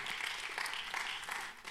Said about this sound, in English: Yeah, that's all right. Let's give them a hand clap today.